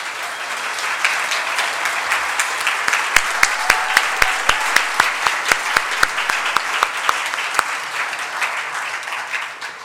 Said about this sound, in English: and if anybody who has volunteered this year for the COAMAT program, could you please stand up right now and receive some applause?